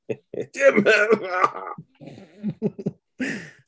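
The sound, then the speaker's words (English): A voice imitates Ash's fit of strained coughing and throat clearing as he tries to read the Necronomicon: a drawn-out groaning rasp followed by several short, choppy hacks, moderately loud. “he coughs like you when he's trying to read it.”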